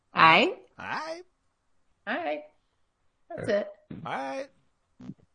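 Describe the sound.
A run of five or six short, throaty belching sounds, each a brief voiced burst with a wavering pitch, separated by pauses. They are fairly loud, close and heard alone.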